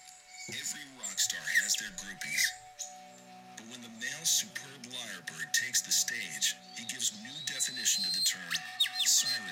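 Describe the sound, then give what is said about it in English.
A lyrebird mimicking a rapid jumble of sounds: bright chirps, squeaks and whistled sweeps over a lower, voice-like warbling, continuous and fairly loud throughout. “They can mimic pretty much any sound that they ever hear, like to perfection. I thought it was a parrot. No, parrots can say words. It's called the lyrebird.”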